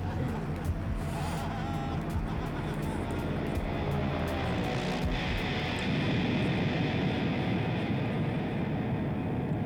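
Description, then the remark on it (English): A loud, steady engine roar like a low-flying airplane fills the scene, swelling after a brief burst midway into a denser, rumbling blast of noise as the plane crashes in an explosion, with no voices. “And then it ends in a explosion. I don't like that. I got scared. Like his worst nightmare of the plane crashing, you know?”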